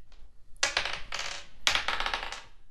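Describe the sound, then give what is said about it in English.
Dice clatter and tumble across a hard tabletop in two quick bursts of rattling, fairly loud, with no voices, as the dice are rolled again. “Give me roll again.”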